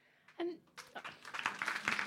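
Audience clapping for a speaker giving a talk, starting as a few scattered claps and quickly building into dense, steady applause, growing louder toward the end, with a short vocal sound at the very start.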